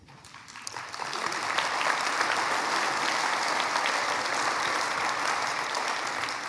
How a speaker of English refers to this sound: Already got applause in the first 5 minutes. That's good. That's a good sign.